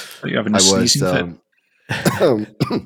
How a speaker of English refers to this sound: I got tea down my throat. Okay. I wasn't watching. Coughing. I thought you were sneezing. No.